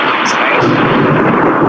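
Thunder rumbles loudly and steadily in the background throughout, a dense, roaring wash of low crackling noise that never lets up, with no distinct voices.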